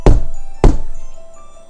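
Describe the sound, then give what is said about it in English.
Two heavy, hollow knocks on wood, spaced about half a second apart, loud, each ringing out briefly before fading into quiet. “How about that for special effects?”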